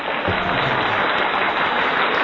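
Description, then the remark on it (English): Steady, dense clapping from a sizable crowd fills the whole stretch, a loud, continuous wash of applause with no voices standing out. “Here, I'll even give you an actual round of applause.”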